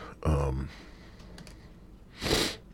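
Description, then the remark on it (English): A drawn-out yawn: a brief voiced groan followed after a pause by a loud, breathy exhale, with no talking. “I'm yawning.”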